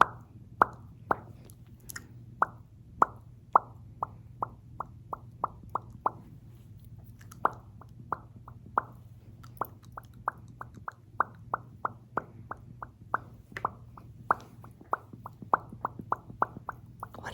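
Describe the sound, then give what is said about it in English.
ASMR bubble popping, bubbles popped on the listener's face: a long run of soft, quick bubble pops, dozens of small wet plops in an uneven rhythm, sometimes clustered, sometimes spaced apart, over a low steady hum with no talking. “Okay, and I'm just gonna pop some bubbles on your face, okay?”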